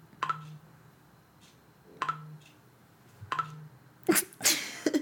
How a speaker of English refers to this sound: what is that? It's my Snapchat. On my phone?